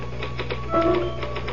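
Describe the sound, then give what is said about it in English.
A quick, steady run of typewriter keystrikes clacks over a low background hum, with a brief ringing tone partway through. No one speaks. “Can I use the typewriter for a moment?”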